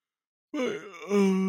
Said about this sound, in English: I'm yawning so much. Nothing good. Nothing good. Nothing better than a good stretch is what I was trying to say.